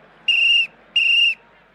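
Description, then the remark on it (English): A referee's final whistle at a Watford football match blows in short, shrill, piercing blasts, two full ones and the start of a third, evenly spaced, with no voices. “When the final whistle blew”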